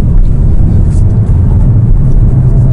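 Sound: car accelerating hard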